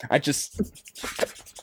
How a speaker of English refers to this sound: It's like, so you get your knee, you start shaving. I shave it like I'm sanding, like sanding paper.